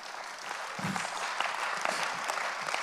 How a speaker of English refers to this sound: That might have been someone swatting a mosquito, but we're going to count it and say somebody clapped.